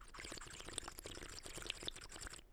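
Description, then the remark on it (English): Steady bubbling and gurgling of water in a bubbler (bong) being smoked, a dense run of small pops and burbles lasting a couple of seconds with no one speaking. “I was smoking a bubbler.”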